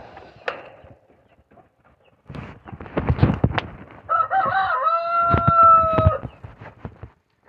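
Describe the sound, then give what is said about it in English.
A loud call from pet birds with a wavering, drawn-out tone, similar to a rooster's crow, as a perch is put in for them. It follows a burst of knocking and clattering, with a short sharp tick near the start. “Putting in a perch for my birds.”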